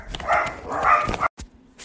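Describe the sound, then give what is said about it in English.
A small rescue dog barks in quick, high-pitched bursts, two long yappy runs, followed by a brief pause and a faint trailing yip. “Sorry, my dog is barking.”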